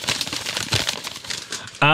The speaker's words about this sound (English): They wrote a real letter. I mean, that paper up in the microphone, I got,